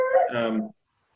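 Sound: dog howling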